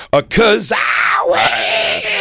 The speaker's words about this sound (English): Is he only listening to his own stand-up on his own channel? Yes, but why does he keep screaming? Because he loves his own stand-up.